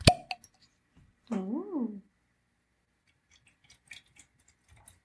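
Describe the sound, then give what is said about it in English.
The cork of a bottle of Yu whiskey comes out with one sharp, loud pop, followed by a short rising-and-falling voiced sound and then a scattering of faint, soft clinks and taps as it is poured. “We actually waited for our listeners to pop and pour today.”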